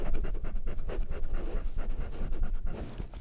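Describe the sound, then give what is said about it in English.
A facility dog pants and sniffs, quick rhythmic breaths with snuffling bursts, steady and fairly loud throughout, no talking. “Does that smell good? Yeah. It might smell like your sister.”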